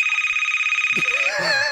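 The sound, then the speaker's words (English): A loud industrial telephone bell rings in a rapid, steady metallic trill at a high pitch, then cuts off as a voice breaks in with an excited exclamation. “That's that terrible, industrial phones.”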